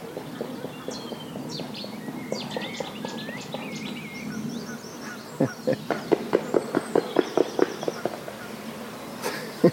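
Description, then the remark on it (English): A flock of small birds, feeding amid a swarm of chironomid midges, chirps and twitters, then a rapid run of sharp fluttering wingbeats and clattering thumps as the birds take off and land. “So that was a swarm taking off and then sort of crash landing here.”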